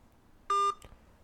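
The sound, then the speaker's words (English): A single short electronic phone beep, a steady bright tone lasting about a fifth of a second, followed by a faint click against a quiet background. “You want to give me a call on my phone back, man?”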